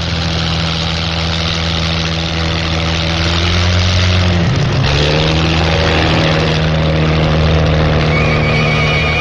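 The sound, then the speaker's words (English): A new Sunbeam record car with two aero engines roars loudly and continuously at speed in Florida, averaging over 203 miles an hour, its deep droning note dipping sharply about halfway through before climbing back up, with no voices present. “new Sunbeam has two aero engines.”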